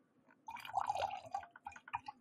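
Wine dribbles out of the spout of an almost empty box of wine in a short, uneven stream, a steady trickle breaking into irregular splashing drips at the end. No one speaks.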